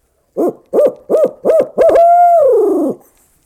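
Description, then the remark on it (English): A person imitates a barred owl call, a variation on the eight-note hoot: five quick, loud hoots followed by one long, drawn-out hoot that slides downward and fades, alone. “And barred owls, you're probably full aware that they don't always do 8-notes. They do variations.”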